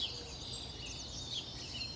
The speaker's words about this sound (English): The migratory birds are coming through, headed north and into the mountains for spring. You can hear white-crowned sparrows, pine siskins, foraging in the trees outside my house as the first rays of sun hit the treetops.